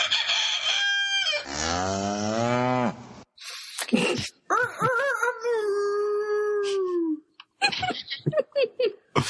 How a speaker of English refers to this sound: Their doorbell is a rooster crow that turns into a moo.